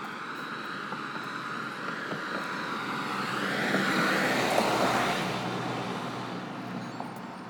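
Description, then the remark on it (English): A single car drives past on a street, its steady rumble swelling as it nears and fading as it moves away, with a constant background hiss of ambient night noise. “Except the occasional car going by.”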